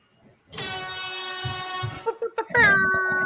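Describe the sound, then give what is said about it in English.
A loud air horn blares at the opening of the Rick A Show in a long steady blast, then gives a few short choppy toots before launching into another sustained, slightly falling blast, with faint voices murmuring underneath. “The air horn's going.”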